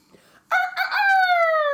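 A rooster crows once, loud: a few clipped opening notes break into a long, drawn-out final call that trails off slightly, with no other sounds around it.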